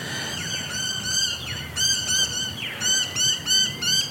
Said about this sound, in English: Oh, and a kookaburra. Whoa. Kookaburra, big chubby kookaburra, all puffy. Just having a bit of a swoop there. Can you hear him? You can just hear him. You can just hear him.